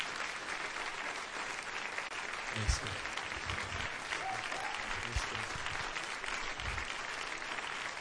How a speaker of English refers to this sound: Can we just give the Lord and them a hand clap of appreciation?